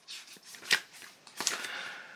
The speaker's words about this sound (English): And I find it in my book, as you can hear the pages turning.